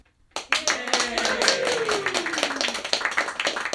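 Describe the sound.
A small group breaks into a round of applause for Dr. Frank Oppenheimer, many hands clapping quickly and steadily for several seconds, with a brief falling cheer from one voice partway through.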